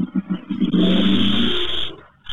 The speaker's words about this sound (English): Wow, that was a fucking crazy-ass motorcycle. No problem. I just turned down the volume because I didn't know what the hell happened. Or was that an airplane? Right. Well, that was a fucking motorcycle.